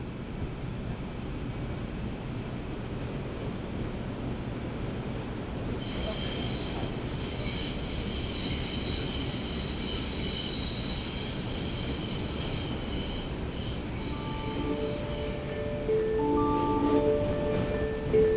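A train rolls steadily along the tracks with a constant low rumble, joined partway through by high, sustained wheel squeals that grow louder and more tonal near the end. No voices.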